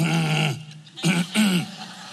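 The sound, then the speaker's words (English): A voice imitates hiccups while choking on bread: a long strained, gulping vocal sound followed by two sharp, abrupt hiccup-like bursts, loud, with no other speech. “The hiccups start rising up.”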